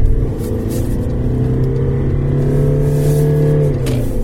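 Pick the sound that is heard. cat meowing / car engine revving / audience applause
car engine revving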